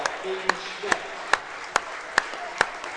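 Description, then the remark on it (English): Rhythmic clapping from a crowd at a basketball game: about seven sharp, evenly spaced claps in unison, each crisp and bright, over a low background murmur. “I don't cheer often, but dang it, we left our heart on the floor tonight, and now it deserved a clap.”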